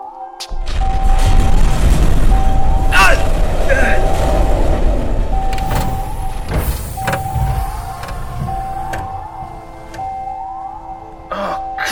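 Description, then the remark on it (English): Heavy bulkhead doors grind shut: a steady mechanical whine rides over a loud, low rumble, broken by several sharp metallic bangs and clanks as the doors slam into place. “The bulkhead doors have come down.”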